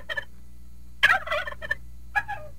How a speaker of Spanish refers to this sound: Chompipe. Mire cómo está.